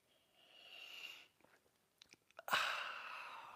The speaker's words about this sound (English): Join me now for the simultaneous sip. Go.